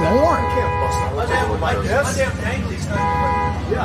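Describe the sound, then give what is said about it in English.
A car horn blares outside in two sustained blasts, one at the start and another near the end, while people talk over it. “Who's honking the...”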